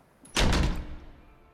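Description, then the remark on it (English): A door slams shut once as a woman storms out, with a loud, heavy thud that rings out briefly, then fades into a low lingering rumble. No one speaks. “She slams her fist on the table and storms out the door.”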